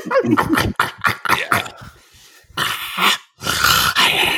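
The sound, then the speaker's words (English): A person imitates a small dog yapping: a rapid string of short, sharp yips, then two longer, raspy, growling bursts, loud and with no speech around them. “But now, Jesus, I'm just picturing like little leeches like yapping like a small dog.”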